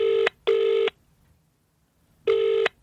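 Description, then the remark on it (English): A phone call placed by voice command rings on speakerphone: a clear electronic double burst, a long pause, then the next double ring starting, slightly tinny and mid-loud with no one talking. “Phone. Call Davis. Speakerphone.”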